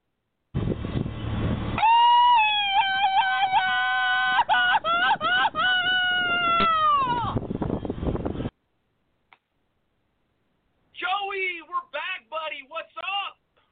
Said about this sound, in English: if you could please hit that Mexican yell for us and bring in the man, the myth, the legend, the Night Owl.